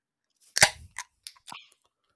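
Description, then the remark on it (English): A can of Down East mimosa cider cracks open with one sharp, loud pop and brief hiss, followed by a few quick, fainter metallic clicks, with no voices. “It's their mimosa cider. In 3, 2, 1. Crack.”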